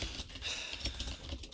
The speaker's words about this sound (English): I thought when you said, oh no, there were typing, I thought you were going to accuse me of typing too loud, which I was. I mean, I did hear the typing, yes.